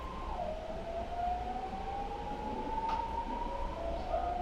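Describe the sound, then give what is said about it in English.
A train sound effect: one long, steady whistle-like horn tone holds for several seconds over a low, continuous rumble, fairly loud, with no talking. “All right, last stop on the clean energy train, the energy transition.”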